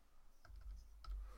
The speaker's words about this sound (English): I like how he's now typing it up because he can't read his own handwriting